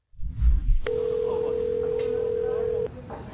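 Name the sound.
phone call ringing tone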